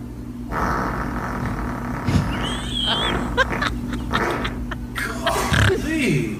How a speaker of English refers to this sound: That's as much of a fart that I could do in probably half a week. How can you hold that much in?